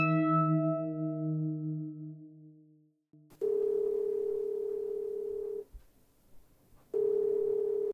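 A fading musical tone dies away, then a telephone handset clicks up in a darkened room at Radio Free Shangri-La and a steady, hissy dial tone hums, cutting out for a moment before returning.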